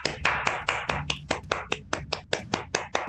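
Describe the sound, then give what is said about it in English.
A person claps their hands about thirteen times in a steady, fairly quick rhythm, each clap a sharp, crisp smack at a moderate level, with no talking over it. “Did that come through as a clap? I was clapping.”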